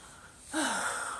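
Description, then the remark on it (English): After a brief hush, a sudden sharp intake of breath, a held-back sneeze with a short voiced catch, trails off into a breathy, hissing rush lasting about half a second. No one speaks. “Sorry, I'm trying to hold back a sneeze.”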